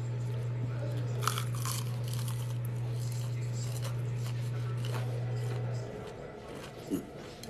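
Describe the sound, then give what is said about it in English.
Crisp crunching as someone bites into cornbread with a thick crust, with a few loud bites early on and softer chewing after, over a steady low electrical hum that cuts out near the end. “I'm gonna come closer to the camera so I can hear this crunch.”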